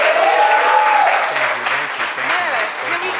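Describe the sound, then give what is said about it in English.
Loud, steady audience applause with dense clapping throughout, mixed with a few cheers and whoops rising and falling in pitch, for a guest in the hot seat on the show All on the Mic in 2021. “Can we make another round of applause for our guest in the hot seat all the way from North Carolina”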